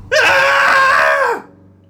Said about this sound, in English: So find a place where it's safe to scream. Let that frustration out and or excitement. As already mentioned, and go ahead and scream along with us. Here we go.